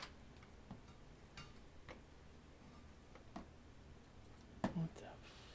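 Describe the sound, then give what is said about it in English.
Quiet, irregular clicks of fast typing on a computer keyboard tap away in quick bursts over a low background hum, with a sharper pair of louder keystrokes near the end and faint murmuring voices. “I think my keyboard fucked up. Yeah, you were typing too fast for it to even register.”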